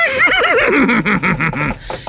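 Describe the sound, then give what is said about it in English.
A horse, the stallion Buttercup from Rhode Island, weighing 512 pounds, lets out one loud whinny, a shrill neigh that quavers up and down for about two seconds before trailing off into a few breathy snorts. “Now in this corner, we got weighing in at 512 pounds, the beautiful stallion from Rhode Island, the horse that's gonna win, of course, Buttercup!”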